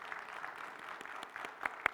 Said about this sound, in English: And we're going to get to hear applause for her. It's been such a gift.